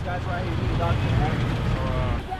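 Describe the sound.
Steady traffic noise at a roadside police checkpoint for the Florida Keys in Monroe County, Florida, staffed by local police, fire and public works employees: a continuous low engine rumble from idling and passing vehicles, loud and even throughout, with faint indistinct voices mixed into the din.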